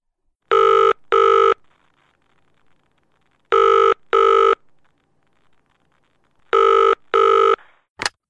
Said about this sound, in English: The phone rang.